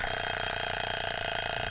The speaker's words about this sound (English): Well, that's my egg timer.